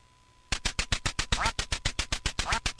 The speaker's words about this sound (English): Is it Duck Hunt? It is. It's your game.